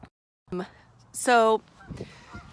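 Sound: geese honking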